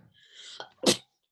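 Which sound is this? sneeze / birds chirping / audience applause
sneeze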